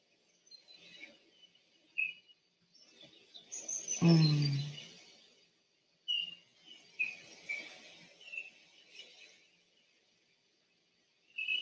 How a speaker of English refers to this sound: Hear the birds.